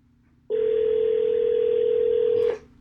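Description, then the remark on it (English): A single steady telephone ring tone sounds clearly for about two seconds, a loud, unbroken electronic hum from an outgoing call to a friend, with no voices around it. “And it is ringing. Let's hear it.”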